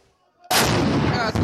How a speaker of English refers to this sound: This is what Khartoum has looked like for over a week. Urban warfare right in the city center, with gunshots ringing out and fighter jets thundering across apartment blocks.